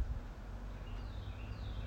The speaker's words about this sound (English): Instead, I'm in my backyard and listening to the birds.